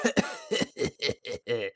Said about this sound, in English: Oh, let me clear my throat.